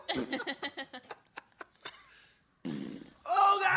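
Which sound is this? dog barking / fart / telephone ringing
fart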